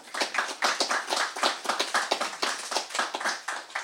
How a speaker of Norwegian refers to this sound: Gi dem alle tre en varm applaus.